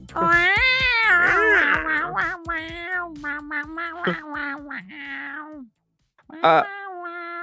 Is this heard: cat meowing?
yes